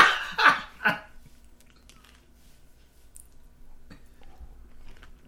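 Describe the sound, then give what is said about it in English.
Loud crunching bursts of someone chewing chips, two or three sharp crunches in the first second, followed by quieter mouth noises and faint clicks. “Do you have chips in your mouth?”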